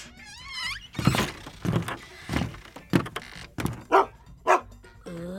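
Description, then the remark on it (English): A junkyard dog gives a brief high whine, then lets out a string of about seven gruff barks at uneven intervals, fairly loud, with no one talking. “It's always good to have a junkyard dog as a friend.”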